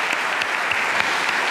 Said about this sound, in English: Again, we are like to thank Archbishop Kurtz again for the beautiful talks. Another round of applause for Archbishop.